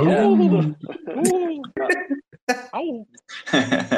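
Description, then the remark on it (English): A person imitates a wolf with a string of short, loud, wavering "ow" howls in quick succession, each voiced call rising and falling in pitch, ending in a rougher, breathier burst, given as a bark for the Wrecked Wolves project during a Twitter Space. “I don't know if you guys have like this sound that you guys have. Like a bark or something for us.”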